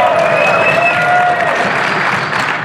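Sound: audience applause and cheering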